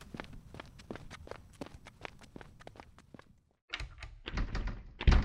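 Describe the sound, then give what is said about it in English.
A dozen or so steady footsteps approach, then after a short pause someone jiggles and rattles a door handle, clunking louder as the locked door refuses to open. No talking. “Now, if you don't want to get demoted to hell, then I suggest you get over there and fiddle that door.”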